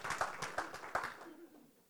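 A short, quiet round of applause: scattered hand claps patter for about a second, then thin out and fade into near silence.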